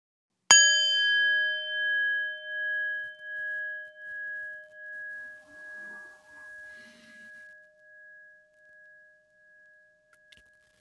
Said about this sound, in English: All right. At the sound of the bell, we will begin.